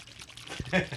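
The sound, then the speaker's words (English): Wet swishing and gurgling of liquid as a man sloshes it around inside his mouth, a brief burst that swells louder toward the end. “He's just swishing it around in his mouth.”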